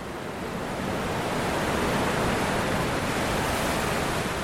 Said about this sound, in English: Whatapu is a desolate stretch of Auckland's west coast, right at the mouth of the Manukau Harbour. Way out from the beach, ocean swells smash into a sandbar. The waves are still big by the time they reach the shore.